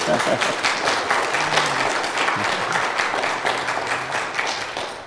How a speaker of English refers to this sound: Appreciate that so much, and certainly have enjoyed all the music. I'm sure you have as well. It's quite a blessing, and many talented and gifted people here, and I'm grateful for them. If you want to give them another round of applause, feel free.